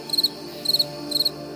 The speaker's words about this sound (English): And I will never forget hearing the crickets coming out and singing during the total eclipse.